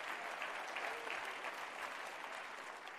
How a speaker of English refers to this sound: Come on, give a clap offering of praise to our God.